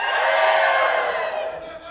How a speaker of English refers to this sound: They go nuts. They're clapping and cheering and screaming.